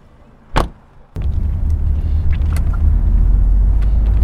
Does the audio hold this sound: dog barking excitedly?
no